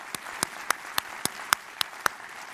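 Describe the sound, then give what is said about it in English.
A steady run of about nine sharp hand claps, evenly spaced, with no crowd roar filling the gaps and no voices; a round of applause for Porsche at a Coca-Cola event. “Let's give them a round of applause one more time.”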